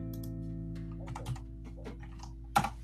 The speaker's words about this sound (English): Yeah, stop typing. You stop typing.